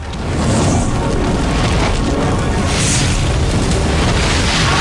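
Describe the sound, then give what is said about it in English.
A loud explosion at the base of a burning windmill, as fire catches on straw and bottles of alcohol, swells up and rolls on as a continuous heavy roar of blast and flames, filling the whole stretch without letting up. No voices are heard. “The fire catches on the straw and bottles of alcohol, causing an explosion at the base of the building.”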